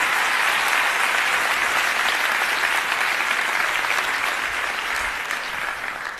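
A crowd applauds steadily, a dense, even wash of many hands clapping at a constant loud level for several seconds before easing slightly toward the end. No one speaks over it.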